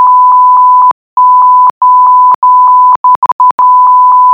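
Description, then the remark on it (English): A loud electronic tone at a steady mid-high pitch repeats over and over, broken by short gaps and faint clicks, with a cluster of quick stutters near the end. No voices. “You know, the beep, beep, beep, beep, beep, beep, beep, beep.”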